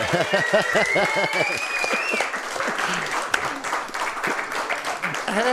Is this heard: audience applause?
yes